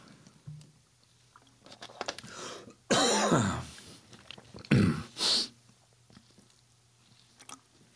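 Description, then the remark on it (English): Someone takes a few quiet sips and swallows of water, then clears their throat twice in loud, raspy bursts before the room goes quiet again. “So I'm going to get a sip of water real quick.”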